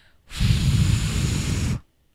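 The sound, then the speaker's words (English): A single long, steady exhale blown through the Shift, a short breathalyzer-like tube worn on a chain under clothes, lasting about a second and a half, with a breathy rushing hiss over a low rumbling flutter, starting and stopping abruptly. “Just a tube to blow through for $105.”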